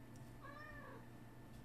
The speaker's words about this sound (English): Did you just hear him fucking meow? Yeah. You did? Meow. Yeah, loud fucking cat.